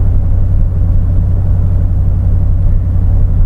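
A pickup truck's engine drones steadily while accelerating at around 3,000 RPM in normal driving, a deep, loud rumble with a constant low hum and no noticeable pitch changes. No one speaks.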